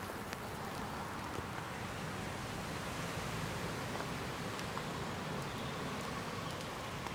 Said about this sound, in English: Oh, raining. Awesome.